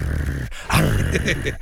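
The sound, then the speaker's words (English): Someone imitates a dog's growl: a brief rough rumble, then a louder, throaty snarl with a rising-falling tone, without talk. “It's a very good impersonation.”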